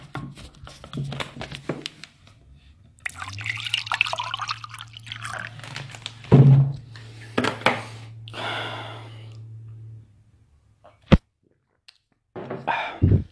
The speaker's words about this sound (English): Hold on, let me pour some water.